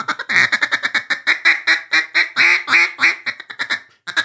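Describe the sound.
A duck call blown in a fast, steady run of mallard hen quacks, about two dozen loud, raspy notes in a rhythmic chatter, with a brief pause near the end and no talking.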